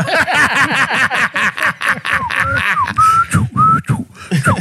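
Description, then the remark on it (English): A loud whistled call made of rapid repeated chirping bursts, ending with a few longer sliding whistle notes, with no talking over it. “Shit, that was a whistle to your jefe.”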